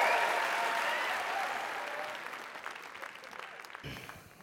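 An audience breaks into a dense round of applause, many hands clapping in a steady wash that gradually thins and fades toward the end, with no one speaking over it, welcoming the first storyteller of the Dublin Story Grand Slam.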